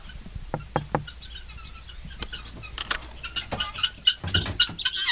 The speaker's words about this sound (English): This is the house of the guineas, and now it's time for them to come out.